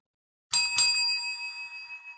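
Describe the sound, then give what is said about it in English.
A bright metallic bell is struck twice in quick succession, loud, then its clear ringing tone lingers and slowly fades, signaling the start of a round. No voices are heard. “All right, everybody, when you hear the bell, let's come out swinging.”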